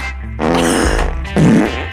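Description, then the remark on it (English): A loud, buzzy fart sound effect plays from a phone, two drawn-out raspy bursts with a brief dip between them, nearly two seconds long with no talking. “So just walk around with about 15 different fart sound effects.”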